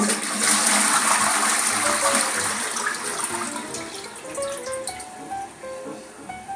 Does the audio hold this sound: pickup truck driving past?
no